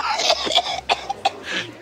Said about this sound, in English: All of a sudden, he starts coughing uncontrollably.